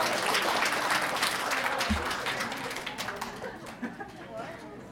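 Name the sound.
audience applause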